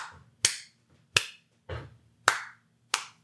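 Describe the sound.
Five sharp hand claps spaced unevenly, landing off any steady beat, demonstrating people clapping along badly with musicians playing, each a crisp smack with a short tail, with no talking.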